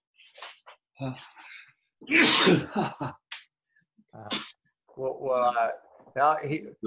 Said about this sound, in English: And so to get the immune system back on board, you need to sneeze.